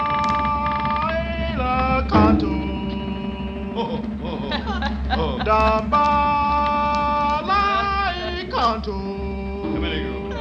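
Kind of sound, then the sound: sound effect, door creaking open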